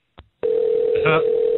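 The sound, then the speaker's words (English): A landline phone tone: after a brief click, a steady electronic hum starts and holds unbroken at a moderate level, heard alone with no talking. “Why does he keep ringing? This is the landline.”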